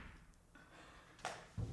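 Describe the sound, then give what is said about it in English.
A door slams shut in the wind, with the door and all the windows open: a sharp crack followed a moment later by a heavy, low thud, both fairly soft against a quiet background with no one talking. “Well, it's just because the door's open and there's all the windows open and so it's slamming.”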